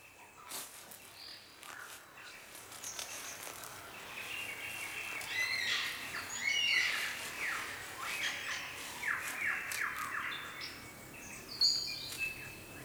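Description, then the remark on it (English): A superb lyrebird of South Australia sings a long, varied song of sharp whistles, squawks and chattering notes, with a constant hiss of insects and forest ambience underneath and no voices. “What bird has the most elaborate, the most complex, beautiful song in the world?”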